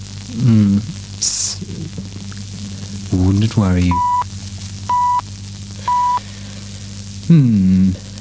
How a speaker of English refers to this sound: There's a crackle or frying noise. Somebody's frying an egg.